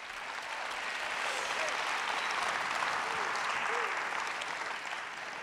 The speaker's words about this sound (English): Come on, you can clap.